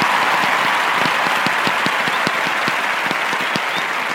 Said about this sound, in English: Well, because of that amazing diatribe you just laid down there, you're going to get, that's right, a standing ovation from the crowd.